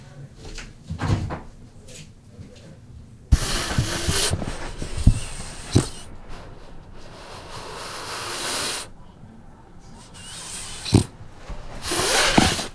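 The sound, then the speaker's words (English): A French bulldog in an apartment snorts and grunts at the microphone, snapping at it, in repeated breathy, rasping bursts, some loud and wheezy, with quieter shuffling and faint voices in between. “He's a little French bulldog.”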